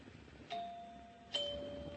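A house doorbell chimes twice in a ding-dong pattern, each clear bell tone struck and left to ring out and linger, heard fairly quietly with no voices.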